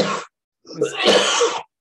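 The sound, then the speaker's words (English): A person coughs: one short harsh burst, a brief pause, then a longer, rougher fit of coughing that trails off into quiet. “I didn't mean to be coughing over your sentence there.”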